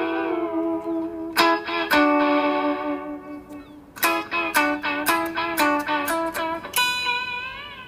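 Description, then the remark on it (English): An electric guitar played through an echo unit plays sustained notes and sharp picked strums soaked in echo, each attack trailing off in repeating, decaying reflections with a slightly distorted, chorused tone. “I got this echo unit and I brought it back to rehearsal.”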